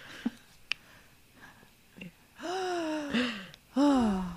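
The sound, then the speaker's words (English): A group of people gasp in surprise at a prom dress, letting out drawn-out 'ooh'-like vocal sounds in two swells after a few quiet breaths and clicks. Moderately loud, with no speech. “Look, everybody's gasping.”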